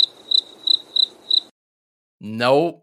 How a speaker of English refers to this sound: And it's not just the crickets that we've been hearing, I don't know, the past 6 months from us.